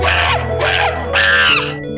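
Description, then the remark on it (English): A bird squawks three times in quick succession, loud, each harsh, buzzy call repeating like an insistent electronic beep, with no voices. “Beeping bird still pest.”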